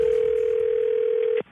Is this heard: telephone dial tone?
yes